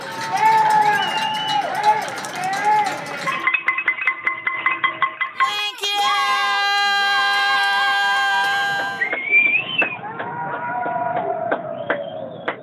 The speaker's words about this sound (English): That is a compilation from Wednesday as Coloradans opened their windows to clap, cheer, and howl. So what's going on? Well, it's a combination of two new nightly rituals, one to honor healthcare workers, the other to relieve stress.